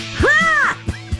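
A toy bald eagle named Squawky, given a little squeeze and tuck behind its tail feather, lets out one drawn-out, rising-then-falling squawk, fairly loud, followed by two soft thumps.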